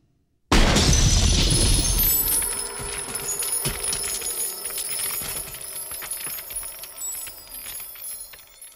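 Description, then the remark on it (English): A loud, sudden shattering crash bursts in as a figure frozen solid by liquid nitrogen shatters into pieces, followed by a long tail of tinkling, scattering fragments that slowly fade over several seconds. No voices are heard. “the whole sequence of the T-1000 freezing up. It's just awesome. Yeah. And then, yeah, shot shatters”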